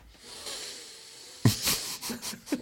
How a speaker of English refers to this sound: Can I sniff your head? Yes, you may. You don't need... I'm getting up and sniffing his head. You don't need shampoo.